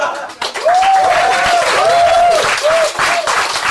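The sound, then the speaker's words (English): A live audience bursts into loud, sustained applause, with bright whoops and cheers rising above the steady clatter of clapping hands throughout, at the opening of the live show Regular Features Live. “No, pause for applause.”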